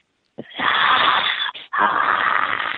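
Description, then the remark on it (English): A person gives a loud, raspy, breathy roar in imitation of a lion, sustained for over two seconds with a brief break partway through. No words are spoken. “And I just went, you know, like a lion sound.”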